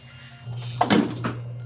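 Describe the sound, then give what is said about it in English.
A door swings shut with a short cluster of bumps and a latch click before the sensors of a quantum brain scanner are calibrated, heard over a steady low electrical hum with no voices. “So the door is now shut, and so now the sensors are calibrated.”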